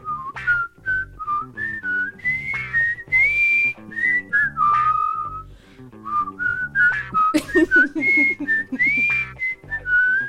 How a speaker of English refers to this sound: Let's see if we can whistle the song. Okay.